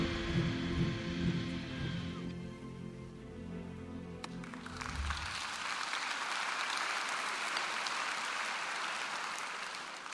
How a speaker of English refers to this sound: I can't tell if you're clapping because it was a good video or because it was 1 minute long.